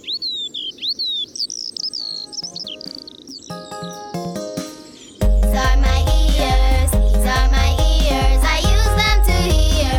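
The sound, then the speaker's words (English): Birds chirp in quick, high-pitched, warbling bursts for about five seconds, then loud, full music abruptly takes over and carries on to the end. “Let's use our ears to listen to the birds.”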